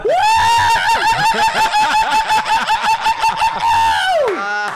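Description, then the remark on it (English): A single loud rooster crow, drawn out for about four seconds with a strained, rising and falling cry that breaks off abruptly. No talking. “It's like a bird, a cockatoo.”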